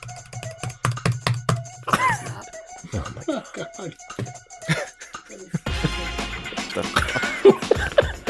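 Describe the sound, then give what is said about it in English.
A malfunctioning computer mouse is clicked rapidly about ten times in a row, sharply, to see if it registers on screen, before giving way to muffled voices and laughter-like sounds with a louder noisy burst near the end. “It's just feverishly clicking on it to see if it shows up here.”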